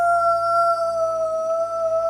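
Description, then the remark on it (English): A voice imitates a dog's baying howl, holding one long, steady, unwavering note for about two seconds, loud with nothing else around it. “The baying echoes across the park as a hush falls”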